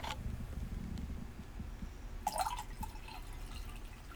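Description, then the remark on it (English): Wine splashes briefly into a glass, a short gurgling pour with a slightly rising ring, followed by a few faint drips over a steady low hum. “Because everything's just a little bit nicer with a glass of wine.”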